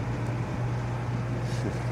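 A band's large tour bus pulls away, its engine a steady low rumbling drone with a broad hiss of noise over it, unchanging in loudness and with no voices.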